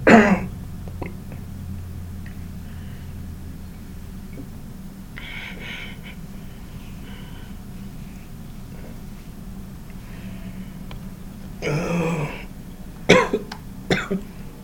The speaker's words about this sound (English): That's my cough. This is my week. This is my cough. This is my gasp for breath.